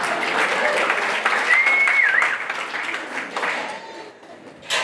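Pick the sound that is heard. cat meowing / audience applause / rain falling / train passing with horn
audience applause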